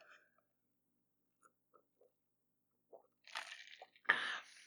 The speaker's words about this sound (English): I need a sip of water